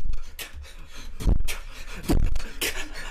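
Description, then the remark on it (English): A voice performs beatboxing with rhythmic breathy inhales and exhales, punctuated by a few deep, bassy thumps and sharp airy bursts, fairly loud with no speech. “There's such an amazing talent that classic hip hop artists have of the breathing in beatboxing.”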